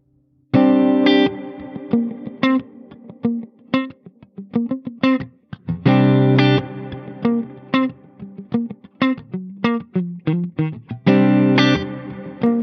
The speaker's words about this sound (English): It means I can fade the chord in, fade the reverb in. So basically I'm sending the guitar signal to the reverb and delay. So it means that the tail of that will carry on even if I bring the level back on that.